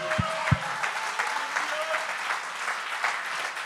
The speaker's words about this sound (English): Come on, would somebody clap your hands?